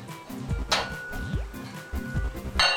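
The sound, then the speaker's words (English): A metal lid clinks and scrapes onto a pot of cholent with potatoes and water, set to cook for 4 or 5 hours. There are a couple of short metallic rattles and a ringing tone, with no talking. “Place the cover on,”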